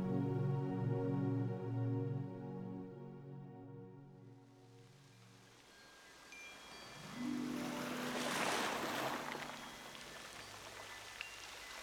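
Soft sustained musical tones fade out, giving way to a hissing wash of ocean water around a wild, rugged island with a few scattered rocks, swelling into a louder surge like a wave rolling in, then settling into a steady rush.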